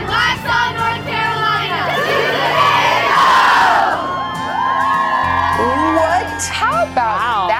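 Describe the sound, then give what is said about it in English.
A large outdoor crowd on a rainy Friday morning cheers and shouts loudly and continuously, with many overlapping voices, rising whoops and yells throughout, swelling into a dense roar midway. “Friday crowd out there, forget about the rain, the smiles are bright, and we will be out there in just a few.”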